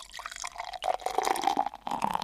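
Liquid drips and trickles steadily from a reservoir into the small cup of a miniature girl figure on a slope, part of a drink-serving contraption, a wet splashing patter with two brief pauses, heard alone without any talking.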